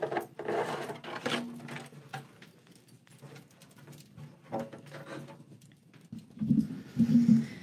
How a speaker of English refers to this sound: And you're going to hear me drumming a bit with this song.